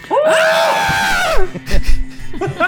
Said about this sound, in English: For the audience at home, I wrote into our episode outline today that the two of them would scream in pain as their introduction. I'm glad they did that separately. That really worked.